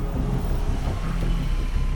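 A car engine rumbles low and steady, a constant idling drone with a faint whoosh of wind, as the vehicle slows and pulls up to a stop at a meeting point.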